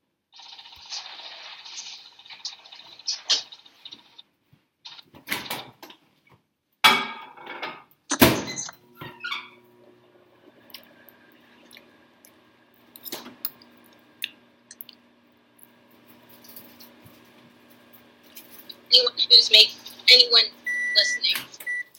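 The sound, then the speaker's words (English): A microwave door thumps shut, followed by the appliance's steady low hum as it runs to melt cheese topped over food, and a few sharp electronic beeps near the end, with some talking in places. “Also, mine is done now, so I'm going to finish this, and I'm just going to top it with a little bit more of the cheese and put it back in the microwave so that can melt over the top, because why not?”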